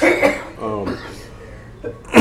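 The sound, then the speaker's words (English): Several short, harsh coughs from a technical support person come in uneven bursts, with a strained vocal sound between them and a loud final cough at the end. “Technical support can't stop coughing long enough to poke a button unless it's porn.”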